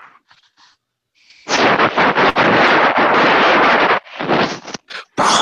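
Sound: airplane landing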